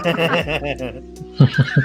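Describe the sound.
A horse whinnies, a loud wavering neigh that drops in pitch, followed by a brief pause and three short, breathy snorting bursts.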